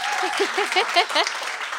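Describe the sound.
An audience claps steadily for the author of a graphic novel at a book event, a dense, even wash of applause that holds at a constant loudness, with voices rising and cheering through it.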